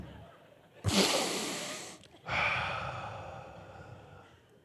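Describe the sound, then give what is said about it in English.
A man breathes heavily into a microphone on stage, two long, loud breathy exhales, the first starting sharply, the second trailing off slowly, prominent with no talking. “Honey, you are breathing better than any husband on the planet.”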